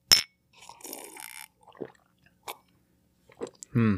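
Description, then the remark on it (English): A single bright clink of drink glasses touching in a toast at the start, followed by soft rustling, a few small clicks and mouth sounds, and a brief voice at the very end. “Cheers. Cheers.”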